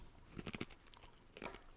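chewing ice cubes

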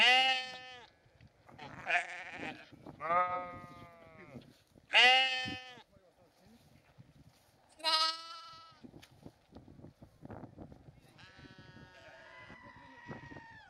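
sheep bleating

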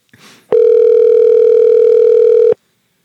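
telephone dial tone

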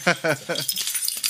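keys jingling

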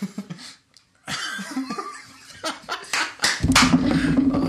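hands clapping

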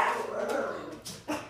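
dog barking

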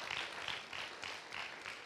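audience hand clapping

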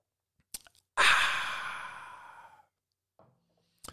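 sipping a drink

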